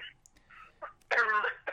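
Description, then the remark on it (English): A few short, hoarse coughs followed by a louder, rasping throat clear, with no other voices. “Ooh, cough, cough. Oh, excuse me, I'm just casually dying over here.”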